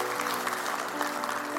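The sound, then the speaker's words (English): Steady applause from a crowd, a dense patter of many hands clapping at an even, moderate loudness throughout, with no voices standing out. “Can we clap for that?”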